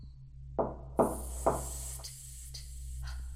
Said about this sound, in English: Whence is that knocking? How is't with me when every noise appals me?